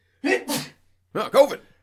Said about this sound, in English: I have to sneeze because of COVID.